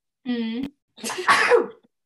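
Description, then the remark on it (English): A single sneeze: a short voiced 'ah' intake, then a loud, breathy explosive burst, alone with no talking around it. “Bless you.”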